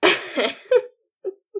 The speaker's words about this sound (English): Okay, I'm not leaving all of that coughing in. So, however much coughing I left in, he coughed a lot more than that.